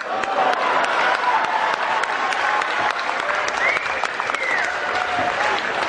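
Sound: audience round of applause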